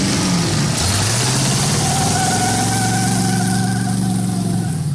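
A powerful supercharged car engine roars, its pitch dropping and then climbing as it revs before settling into a steady, rumbling idle, loud and continuous with no voices.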